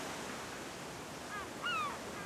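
A steady, even wash of ocean surf rolls against the shore, swelling slightly near the end, with a short bird call cutting through once in the middle. No voices.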